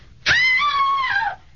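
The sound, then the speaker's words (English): A woman lets out a single loud, sustained scream lasting about a second, high-pitched and piercing with a slight falling tail, with no talking around it. “What was she screaming about, mister?”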